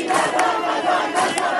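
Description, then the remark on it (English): A large crowd gathered outside a prison on Sunday night chants against the regime in loud, rhythmic unison, voices rising in steady surges with sharp accented shouts roughly every second. “Scenes of sheer bravery as the crowd chant against the regime and support Qabadlu's mother”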